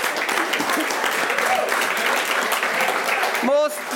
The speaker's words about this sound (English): And joined with them as Galway legend, we all know him, he retired at 32, probably a little bit too soon, is Ja Fallon. Now, Ja Fallon, you can give him a round of applause.